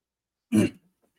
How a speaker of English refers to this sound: Well, it's the we're doing a Locked On coughing crossover here.